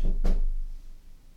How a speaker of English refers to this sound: Someone's just knocked on the door. Don't really know why. Kind of in this office. It's my first day and nobody's knocked on the door. So that's quite worrying. But did you hear the knock on the door?